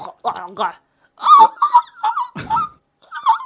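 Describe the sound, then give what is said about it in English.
A voice mimics a pelican or seagull with a string of harsh, nasal squawks, about five or six short bursts in an uneven rhythm, fairly loud, with laughter-like breaks between them. “I've seen you like eat like a pelican or a seagull, which is like...”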